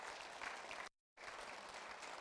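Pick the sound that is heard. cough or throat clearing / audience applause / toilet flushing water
audience applause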